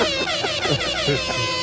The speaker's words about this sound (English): Air horn.